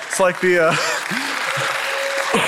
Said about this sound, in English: Thank you. Thank you for a couple little claps there.